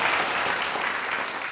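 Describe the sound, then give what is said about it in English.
A burst of applause honoring Catherine Hahn as Agatha Harkness in WandaVision, many hands clapping in a dense, steady crackle that holds at an even level throughout, with no voices over it. “So applause to Catherine Hahn for Agatha Harkness.”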